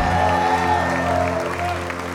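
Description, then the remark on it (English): An audience at an evangelist's meeting in Northport, Florida, gives Jesus a big hand clap: dense, steady hand clapping, loud and continuous, over a sustained chord of music humming underneath for the full two seconds. “Well, give Jesus a great big hand clap in Northport, Florida.”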